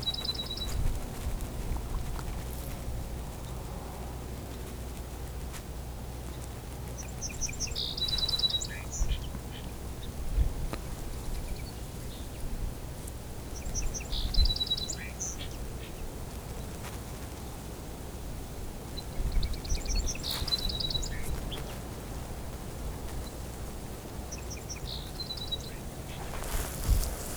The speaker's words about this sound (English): bit of back and forth between two song sparrows here.